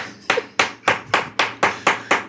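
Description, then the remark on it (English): A cup is banged down on a table eight times in a quick, steady rhythm, each thump sharp and solid with a brief ringing decay, and no voices in between. “That was a pretty quiet cup check. Just a thump.”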